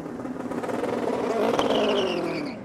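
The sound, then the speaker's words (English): The V8 engine of an LMP2 prototype race car roars, its pitch climbing steadily as it accelerates and grows slightly louder over a couple of seconds, with no voices present. “Since LMP2 cars are built to the same specification, they all feature the same V8 power plant, regardless of manufacturer.”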